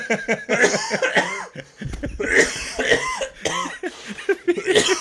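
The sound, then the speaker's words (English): A person with whooping cough coughs hard and repeatedly, a run of harsh, rasping bursts broken by strained, wheezing breaths between them, with no talking. “It's the whooping cough.”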